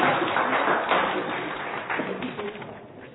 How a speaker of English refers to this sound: All right, give a clap to our actors and readers. Thank you very much.